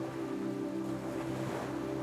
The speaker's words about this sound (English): There is a large opening in the rocks. It is a welcoming entrance. As you go inside the cave, you can hear the sounds of the waves become amplified as they bounce off the rock walls.